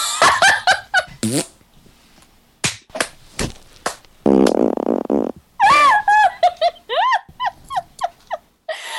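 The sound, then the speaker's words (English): A string of short, sputtering fart sounds, then one long buzzy rasping blast, followed by bursts of high-pitched giggling and laughter near the end. “Anyway, farts.”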